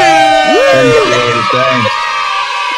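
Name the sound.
air horn sound effect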